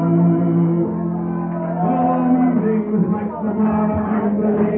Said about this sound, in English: This is a singing club. Listen to the voices behind yelling out.